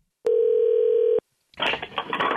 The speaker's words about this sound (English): I keep getting busy signals, and it just keeps ringing and ringing and ringing.